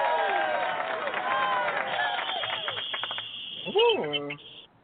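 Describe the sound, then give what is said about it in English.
A short applause sound effect: a burst of crowd applause with cheering and overlapping voices, steady and fairly loud, capped by a rising whoop near the end before cutting off abruptly. The sound is slightly muffled and tinny. “I got to work hard up in this piece with some applause, ain't it?”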